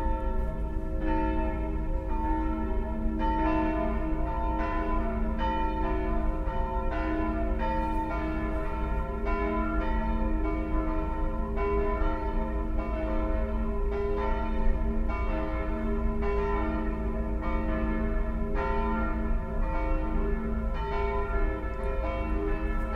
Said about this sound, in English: A lot of bells here in Europe.